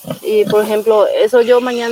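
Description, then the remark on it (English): A pig being prepared for slaughter squeals loudly in a series of drawn-out, strained cries that rise and fall with brief breaks between them, about two seconds in all, in a German district near Nueva Germania, Paraguay. “were preparing to slaughter a pig.”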